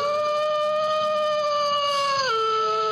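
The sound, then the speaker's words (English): A long, loud werewolf howl holds a steady eerie pitch, then slides downward near the end, sounding alone with no talking. “Werewolves?”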